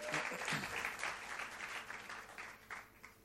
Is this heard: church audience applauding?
yes